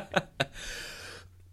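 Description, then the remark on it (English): Two sharp coughs in quick succession from someone whose warm apple cider went down the wrong pipe, followed by a rough, breathy exhale lasting about a second, with no talking. “I'm drinking some warm apple cider. And it went down the wrong pipe.”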